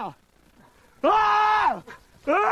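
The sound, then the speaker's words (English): A man lets out a loud, sustained scream of terror, then a brief pause before a second cry begins and is cut off. The screams are strained, with no talking. “That first scream of his is pure terror.”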